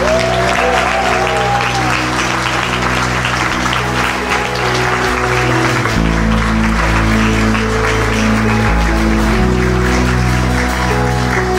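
Sustained applause from a sizable audience, loud and steady for the whole stretch, with dense clapping over a low instrumental drone and no talking.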